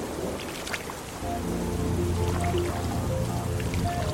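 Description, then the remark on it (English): Heavy rain pours in a dense, steady hiss that fills the whole scene, joined after about a second by low sustained tones droning beneath the downpour. “The rain was so loud now that we wouldn't be able to hear if a creature approached, unless it shrieked first.”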